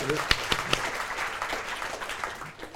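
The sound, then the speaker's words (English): A short burst of audience applause: many hands clapping in a dense, steady patter, with a few sharper claps standing out early before it eases off slightly at the end. “give her a clap.”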